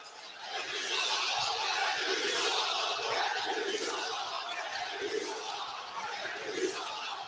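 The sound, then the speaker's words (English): A large arena crowd roars in protest at a referee, a dense, sustained wall of shouting and jeering that swells within the first second and holds loud throughout, with louder surges rising now and then. “The crowd is taking a little issue.”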